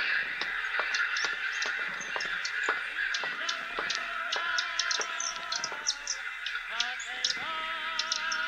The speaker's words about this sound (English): The sound of many bodies pressed together, shuffling on the sills. Now and again, a thud, a crash, and some birds dived and fell. Many would kill themselves that way.